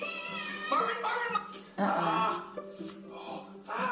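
A domestic cat meows repeatedly, a series of drawn-out, wavering cries following one another over a few seconds.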